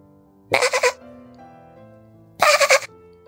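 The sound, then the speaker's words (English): A distressed little lamb bleats twice, each call a loud, quavering, wavering cry lasting about half a second, with a short quiet pause between them and no voices. “They weaved through the trees and crossed a stream where they came upon a little lamb who was quite distressed.”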